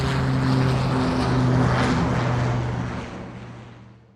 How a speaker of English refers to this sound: As they hoisted up the Mexican flag, a P-47 plane flew overhead.